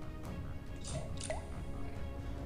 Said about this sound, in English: That drip sounded like something happening in the bathroom.